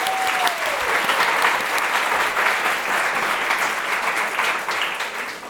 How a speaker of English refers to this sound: So a round of applause for Jojo.